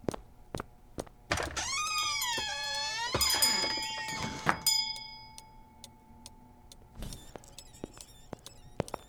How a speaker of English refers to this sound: Was that the door? That was Chester Warren.